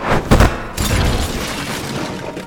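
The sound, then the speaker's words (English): Someone crashes into a porcelain bathroom sink and knocks it off the wall; the porcelain shatters loudly, then a scatter of breaking debris and clattering fragments rings on for a couple of seconds before tapering off. “you crack right into the porcelain bathroom sink and knock it off the wall”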